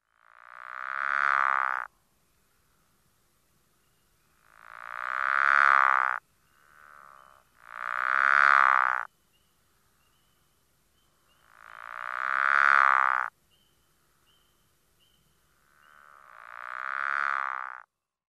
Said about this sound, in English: Occasionally, we hear other frogs and toads at NCTC. The snore of a pickerel frog.